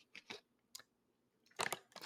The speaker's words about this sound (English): Ugh, I'm drinking water because I just talked for 18 minutes.